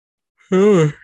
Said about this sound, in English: You just ended on a big yawn. Big yawn.